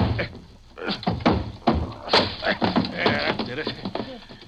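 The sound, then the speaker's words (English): A locked office door is forced open with a series of heavy, irregular thumps and bangs, each impact sharp and loud, with scuffling and rattling noise filling the gaps between blows. “His office door's closed, Luella. Yeah, and it's locked, too. I'll bust it here.”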